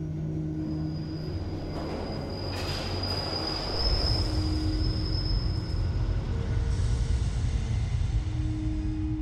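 A London Underground tube train rumbles along the tracks, a thin high wheel squeal ringing over it, and the roar swells louder about halfway through. No voices.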